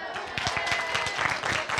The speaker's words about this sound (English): All right, good morning, everybody. Oh, I got one clap. Ooh.